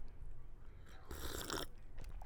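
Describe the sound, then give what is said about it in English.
A single slurping sip of peach lemonade tea, a brief hissy burst of about half a second, surrounded by faint mouth and swallowing noises, with no talking. “Can I have a sip of the peach lemonade? It's my juice. I'm taking a sip.”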